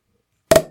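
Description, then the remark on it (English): A single sharp, loud cork pop from a bottle, uncorked right into the mic, bursts out of silence, with a brief hollow ring that fades quickly. No one speaks. “you cork it right in the mic. We'll let you hear that pop.”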